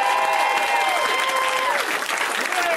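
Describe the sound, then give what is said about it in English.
A comedy show audience at the UCB Theatre applauds the comics backstage, a dense wash of clapping at constant loudness, with faint cheers and whoops rising and falling over it. “They can hear you. Let's clap for them.”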